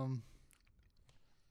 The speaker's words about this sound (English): Will you stop chewing in the mic